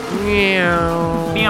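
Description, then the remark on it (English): A man imitates a cat with one long, drawn-out meow, voiced loudly, its pitch rising and then sliding down over about a second and a half. “Meow. That man making the sound of, I'm going to say, Red Bull already running away with the championship”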